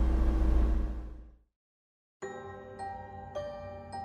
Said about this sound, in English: Ryan pulls his phone out and ends the call, then starts the car and backs out of the parking spot